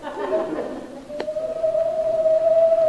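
An owl in a tree right outside the window gives a long, drawn-out hoot that holds steady for well over a second, clear, preceded by a soft murmur and a brief click.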